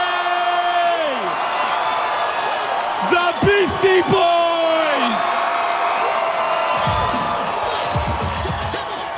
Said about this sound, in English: Now, I don't know if you could tell from that clip, but there was a part in that intro where the crowd, the noise just swelled. Like, I felt an energy inside of the theater.